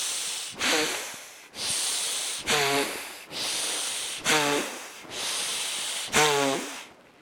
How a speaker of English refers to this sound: Long hissing breath from the belly.